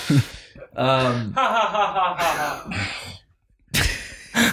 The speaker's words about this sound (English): That's such a good laugh track.